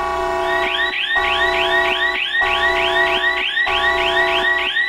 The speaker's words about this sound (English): Just getting our nice warning siren out of the way there.